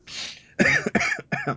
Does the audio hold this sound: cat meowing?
no